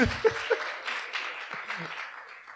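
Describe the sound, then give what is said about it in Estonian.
An audience applauds in a steady, dense patter of clapping that holds at an even level for a couple of seconds, with a few sharper claps standing out near the start. “Aplaus! Aplaus!”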